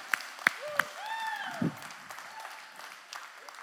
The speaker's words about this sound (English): Can we give God a hand clap of praise in this place? Yeah.